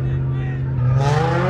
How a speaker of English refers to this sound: and revving up engines, doing donuts, and drifting. Hometown police say this happened in the Mercy Mosque parking lot near Costner and Beck, which is surrounded by nothing but homes.